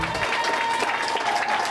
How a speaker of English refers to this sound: They cheer for every successful patient. These moments matter to hospital staff. It's just joy without bounds.